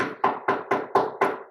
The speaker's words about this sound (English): For the others, it came as an insistent knock at the door somewhere around maybe midnight, maybe 2 a.m.